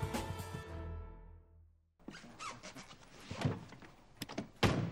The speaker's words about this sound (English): Helps if you open the door.